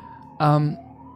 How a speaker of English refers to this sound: All right, we'll let the fire trucks pass before we go forward.